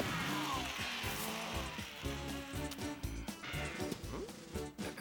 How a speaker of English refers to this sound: It's a remote control car.